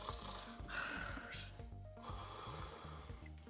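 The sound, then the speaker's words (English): A voice imitates the heavy sleeping breaths and snoring of someone asleep in a tent, a few raspy, snorting inhale-exhale cycles, steady, with no words spoken. “Do I hear, like, heavy breathing, like sleeping breathing?”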